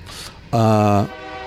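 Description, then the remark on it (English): A passing train sounds a single loud, sustained horn blast, about half a second long, rich and brassy, over faint background rumble before cutting off abruptly. “Oh, here comes a train.”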